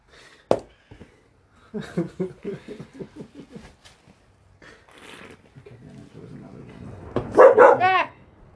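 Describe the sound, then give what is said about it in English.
A dog barks loudly: one sharp bark, then a run of quick yappy vocalizations, and a final loud, drawn-out bark near the end. “Jesus Christ, dog. You scared the hell out of me.”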